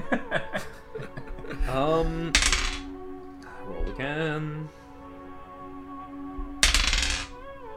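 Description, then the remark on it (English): Dice clatter across a hard tabletop in two brief, sharp rattling bursts a few seconds apart, with people chuckling and murmuring throughout. “Roll again. Roll this. Oh, don't give me this dice.”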